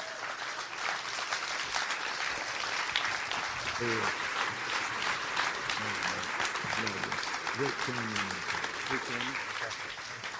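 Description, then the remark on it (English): A standing audience applauds steadily to honor its heroes in the faith, a dense, sustained wash of many hands clapping throughout, with faint voices and cheers rising beneath it partway through. “And I just want you to stand up and give a hand clap for my heroes in the faith.”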